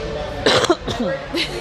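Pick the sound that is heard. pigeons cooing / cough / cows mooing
cough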